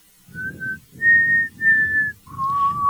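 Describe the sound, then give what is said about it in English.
A person whistles a short melody of four sustained notes, the last one lower and longer, with a breathy low rumble under each note and short gaps between them. “I don't know if I did that well or not because of whistles.”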